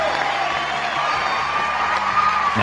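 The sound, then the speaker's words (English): A crowd cheers and whoops with applause mixed in, a dense, loud wash of noise that holds steady for the whole few seconds without letting up. “Is that applause first. Give me some applause.”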